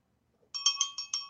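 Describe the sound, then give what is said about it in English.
A bright, high-pitched bell sound effect rings out in a quick run of about half a dozen rapid, evenly spaced strikes, loud and alone with no voices. “I feel like that should have deserved a second bell.”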